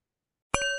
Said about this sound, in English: I invite you to join me in 30 seconds of silence for the animals, and we'll conclude with the sound of the bell.